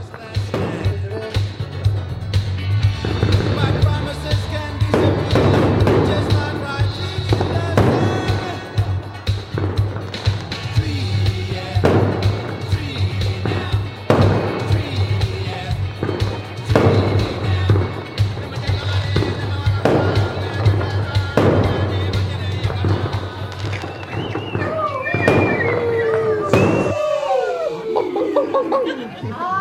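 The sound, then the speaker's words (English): Fireworks burst again and again in sharp, booming cracks at a Sky show fireworks display, over steady crowd chatter and a low constant drone, the barrage going on for nearly half a minute before stopping. “It's our first Sky show, and we weren't really prepared.”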